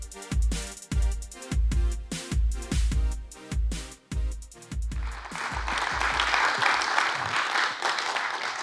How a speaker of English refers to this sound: How y'all doing? Half of you clapped for me, the other half didn't.